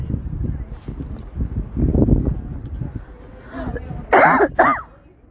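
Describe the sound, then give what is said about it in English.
A harsh coughing fit: low rumbling throat sounds build up, then two loud, raspy coughs burst out near the end, with some murmured voice mixed in earlier. “Sorry, really weird coughing spurt.”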